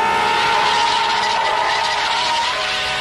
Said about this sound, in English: the hopes for the show rise a little as a semi-truck seems eager to run both Shore and his friend down